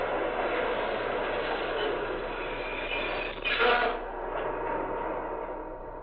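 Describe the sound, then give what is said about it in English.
A seven-car local train rolls into the station with a loud, steady rumbling roar that holds throughout, swelling briefly into a harsher hiss partway through before settling back. No voices are heard. “Here comes the local.”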